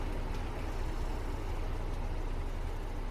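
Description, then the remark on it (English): A steady, low engine rumble fills the whole stretch, riding inside a moving bus travelling back to Ely in the East Nook of Fife, with constant road and motor noise and no voices. “I jump on a bus to get back to Ely, where I left my car.”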